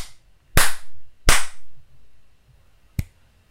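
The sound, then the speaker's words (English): Two loud, sharp hand slaps less than a second apart, each with a brief ringing tail, then a pause and a single thinner, crisp finger snap. No voices. “Three slaps and a snap?”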